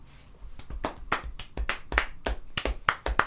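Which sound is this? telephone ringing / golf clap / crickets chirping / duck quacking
golf clap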